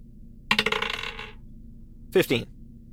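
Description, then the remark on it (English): A twenty-sided die, a straight d20 rolled for a hammer in a tabletop game and coming up 15, clatters across a tabletop in a quick burst of bright rattling bounces that fade within a second, followed by a short vocal sound. “Roll me just a straight d20 for the hammer.”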